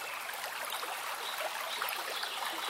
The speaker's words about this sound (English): Ooh, you hear that sound and you run towards it, right? It's water.